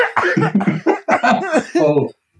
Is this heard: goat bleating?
no